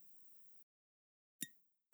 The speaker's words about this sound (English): That was terrible. It was the tiniest clink.